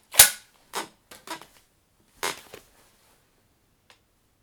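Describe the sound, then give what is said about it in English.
A magic appearing cane's striker fires with a sharp, loud crack, followed by a handful of quieter snapping clicks and rustles spread unevenly over a few seconds, with one faint tick near the end. “Right, now I didn't look, but I think that's an appearing cane.”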